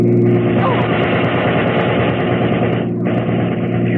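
A car engine roars loudly, a dense rushing growl that holds steady for several seconds, briefly drops away, then surges back as the vehicle speeds past.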